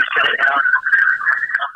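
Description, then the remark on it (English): Voices over a call line come through thin and band-limited, smeared by a loud echo that lets each sound linger and overlap into a continuous, ringing wash. “Yeah, we got a super echo going.”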